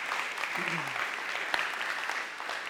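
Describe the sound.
Steady applause from an audience fills the moment, a dense wash of many hands clapping at once, with a brief voice sliding briefly underneath near the start.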